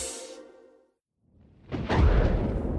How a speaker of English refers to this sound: Okay, Smarty Pants, you're probably very familiar with the sound of thunder. My dog sure is, which is why she's hiding under the table. It's okay, Luna. It's just a sound effect.